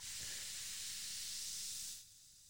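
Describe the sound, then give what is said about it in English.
Sparkling water (Spa Rood) poured into red wine to make tinto de verano fizzes with a steady, bright bubbling hiss for about two seconds, then drops away abruptly to a faint residual fizz. No one speaks. “Okay, now I'm pouring in the sparkling water into the red wine or the orange. Oh, you hear the bubbles.”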